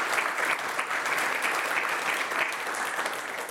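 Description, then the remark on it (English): Sustained audience applause, a dense, steady wash of many hands clapping at an even loudness throughout, with no voices standing out over it. “Let's give them a round of applause for getting through the...”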